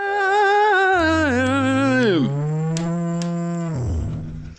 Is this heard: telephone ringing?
no